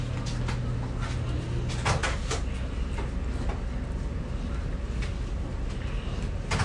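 A kitchen drawer slides open and shut with a few sharp clicks and wooden knocks over a steady low hum that stops partway through.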